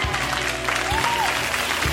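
An audience claps together in a dense, steady burst of applause, many hands blending into a continuous crackling wash that holds at an even loudness throughout, with no one speaking.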